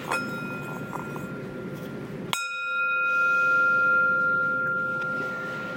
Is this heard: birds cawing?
no